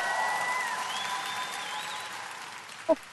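Steady crowd applause welcoming a guest, with a few whoops and high-pitched cheers rising above it, sustained for a few seconds before tapering off, ending with a single sharp clap or thump.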